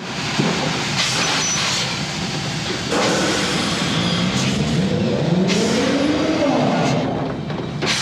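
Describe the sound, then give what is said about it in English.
Loud, steady steam hissing on a film set, recorded live by Ben Burtt with a microphone, fills the whole clip, with sharper bursts of hiss surging in and out over a low mechanical rumble whose pitch slowly rises and falls. “the loudest part of the movie is just hissing”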